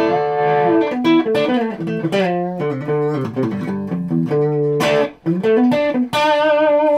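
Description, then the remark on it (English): An electric guitar played through its bridge humbucker pickup plays a bright, driven melodic phrase with sustained bent notes and rich overtones, loud, with no talking over it. “So bridge humbucker next thing.”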